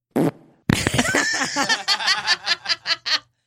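A loud fart: one short blast, a brief pause, then a long buzzing, wavering rip that breaks into a quick run of rhythmic sputtering pops before stopping.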